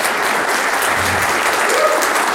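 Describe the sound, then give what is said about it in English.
An audience at a film event applauds a crew member steadily, a dense wash of many hands clapping at an even, fairly loud level throughout, with a faint voice murmur briefly rising beneath it. “Round of applause for this guy.”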